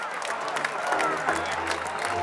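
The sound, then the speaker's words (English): A large baseball stadium crowd applauds and cheers at the end of an inning at a 12 noon Wednesday game, with dense, steady clapping and a murmur of voices blending into a continuous roar, heard from within the stands. “And that is the end of the inning. Listen to this crowd.”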